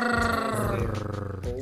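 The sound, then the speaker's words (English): A person imitates a cat's purr by letting the tongue vibrate at the top, a continuous, low, rumbling vocal vibration, steady and pulsing for under two seconds, growl-like with a slight shift in pitch near the end. “See, let the tongue vibrate at the top.”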